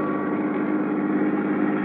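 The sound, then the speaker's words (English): A new car's engine runs at a steady, even drone as it is driven into town in Sarasota, Florida, a low rumble with a faint higher hum on top, holding level the whole time with no voices. “You, like my new car, Johnny?”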